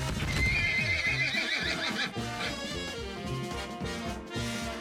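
A horse lets out a loud, shrill whinny while hooves clip-clop in a steady rhythm; the hoofbeats keep going after the neigh fades, with no talking.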